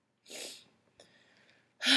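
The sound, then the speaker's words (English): A person, emotional and trying to hold it together, gives three quick, breathy sniffles through the nose: a moderate one, a softer, slightly whistly one, then a sharp, loud final sniff. No one speaks. “Sorry, I'm sniffling because, like, I'm a little emotional and I'm trying to hold it together.”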